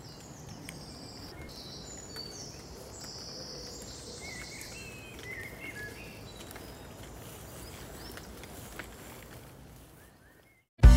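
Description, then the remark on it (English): Early morning birdsong: several birds chirping and whistling over a soft outdoor hush, steady throughout, before a sudden loud noise cuts in at the very end. “I just wanted you to hear that really early morning bird song, despite it all.”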